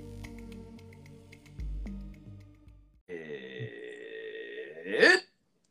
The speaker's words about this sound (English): Dude, that was a long one. I was wondering whether that was going to turn into a burp or not. And it did.